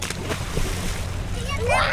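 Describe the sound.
Water splashes and sloshes steadily as a small group of kids splash in the murky water along the banks of the Rio Grande, with indistinct voices mixed in and a brief rising high-pitched call near the end.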